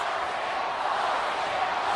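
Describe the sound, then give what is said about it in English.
A huge arena crowd at a WWF event chants the name of Stone Cold Steve Austin in unison, a loud, steady wall of voices that fills the space without a break. “Crowd chanting for Stone Cold Steve Austin.”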